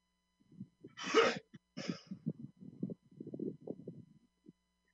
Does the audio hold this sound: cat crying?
no